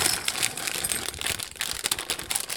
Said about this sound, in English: So the first thing I'm going to do is put 10 ounces of my chocolate chunks into a bowl.